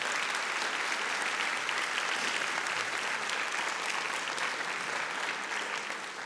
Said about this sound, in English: who is here in the audience, she needs a round of applause. She won't stand up.